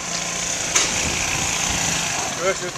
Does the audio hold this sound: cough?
no